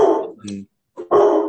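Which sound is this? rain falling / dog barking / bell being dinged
dog barking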